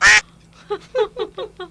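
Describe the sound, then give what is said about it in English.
A sharp, loud burst opens, then a duck quacks five times in quick succession, nasal, with short even gaps between calls and no talking. “incoming! Duck! No, duck!”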